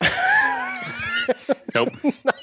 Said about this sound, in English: So sorry about the cough there. Took a bad sip.